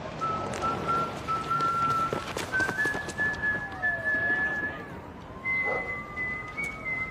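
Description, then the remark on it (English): Someone whistles a simple, sing-song nursery rhyme tune, clear, steady notes stepping up and down over a noisy, bustling background, with faint sounds like a dog. “He walks in, whistles the Farmer and the Dell. He whistles the first few bars of it,”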